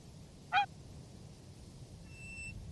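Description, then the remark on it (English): A single sharp, loud goose honk rings out, followed a moment later by a thinner, fainter call over a steady low outdoor rumble, as geese step one by one into a wooden frame. “1 by 1, the other geese followed.”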